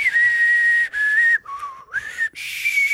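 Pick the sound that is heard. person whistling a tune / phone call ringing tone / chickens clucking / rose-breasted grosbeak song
person whistling a tune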